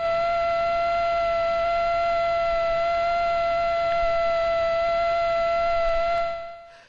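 A male Aedes aegypti mosquito's wings buzz at about 600 hertz, 600 beats a second, in one steady, high-pitched whine with a rich harmonic edge. It holds unbroken for about six seconds before fading out, with no voices.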